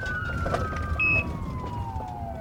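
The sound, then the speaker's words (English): An ambulance siren, on an ambulance heading to the hospital, wails in one long, steady downward sweep over a low rumble of traffic and engine noise, with a brief higher tone cutting in partway through. “We're just getting to the hospital. The ambulance drivers are fucking insane, but they're fast.”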